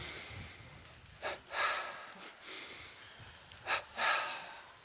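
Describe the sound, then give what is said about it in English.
Forceful breaths: two quick sharp sniffing inhales followed by a longer blown exhale, repeated twice in a steady pattern, with no talking; an energizing double breathing exercise done while standing. “Let's energize a few times. Do double breathing.”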